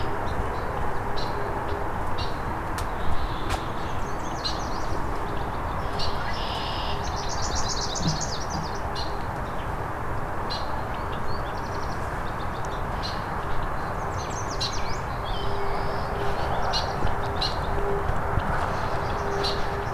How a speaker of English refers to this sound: So yellow warbler has the song Sweet, Sweet, Sweeter Than Sweet.